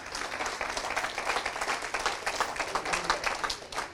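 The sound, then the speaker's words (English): An audience applauds steadily for several seconds, a dense, even wash of many hands clapping together, with no voices rising above it. “Come on, you can clap if you want.”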